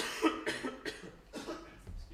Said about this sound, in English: And I'm just going to pause and cough. Hold on.